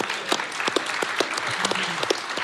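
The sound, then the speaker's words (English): A small group claps steadily, a dense patter of overlapping hand claps with sharp transients throughout, moderately loud, with a faint low voice murmuring briefly underneath. “Let's just clap that shirt through. Let's clap it up.”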